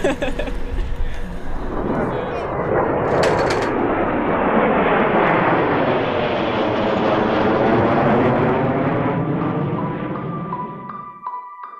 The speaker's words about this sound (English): We should start getting out of the way. I think we should start turning on the planes.